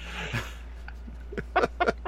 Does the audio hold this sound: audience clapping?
no